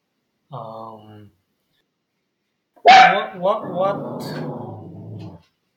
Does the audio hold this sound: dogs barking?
yes